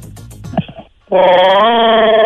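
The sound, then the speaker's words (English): A man's voice imitates a throaty creature roar: some rough, gurgling grunts, a short pause, then a loud, sustained, wavering howl-like bellow held for over a second. “It's a little throaty for me, but... Is Chewbacca on the phone? But Chewbacca's more of a roar than a gurgle”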